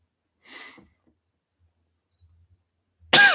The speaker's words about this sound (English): Oh, she's coughing out.